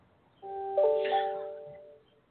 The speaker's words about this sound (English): And we've got some bells going on here.